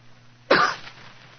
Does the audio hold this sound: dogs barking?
no